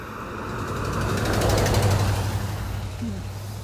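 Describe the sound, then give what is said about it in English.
A truck coming toward the speakers rumbles past on the road, its low engine drone and road roar swelling to a peak midway, then easing off as it moves on. “Truck coming at us.”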